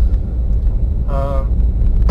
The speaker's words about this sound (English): Caution, unpaved road. Thank you, new truck, telling me I'm going on an unpaved road.